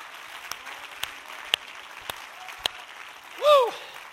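An audience claps together as a hand clap to the Lord in a steady wash of applause, with sharper claps landing about every half second, and a brief voice rises in a sliding cry near the end.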